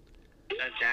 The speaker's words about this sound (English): Wait, sorry, I'm getting a phone call.